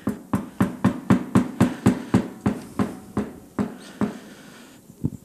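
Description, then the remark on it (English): About fifteen loud, hollow knocks on a door, steady and fairly quick at first, then spacing out and slowing, with one last knock after a short pause. No one speaks. “There's a knock on your heart today.”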